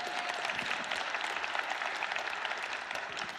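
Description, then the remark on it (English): An audience claps for God, a dense wash of many hands beating at a fast, even rate and holding a loud, sustained level throughout, with no voices standing out. “Yes, you can clap for God.”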